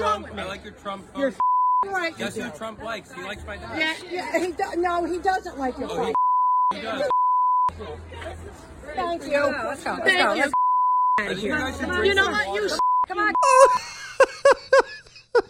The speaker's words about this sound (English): The whole thing is one long beep. You can't even make anything out. The only part you can really make clear is when he asks her to put her mask on and she tells him to go beep himself.